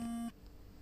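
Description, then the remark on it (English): A phone gives one short, steady electronic beep with a low, buzzy tone, cutting off abruptly and leaving near silence behind it. “Phone was going now.”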